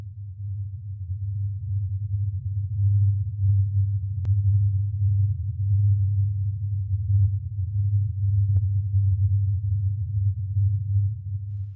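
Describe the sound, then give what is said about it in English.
A deep, steady rumble drones continuously for about twelve seconds, a low, labored growl like a truck straining up a hill, with a few faint clicks over it and no voices. “Hal says it sounds like a truck that is trying to get up a hill.”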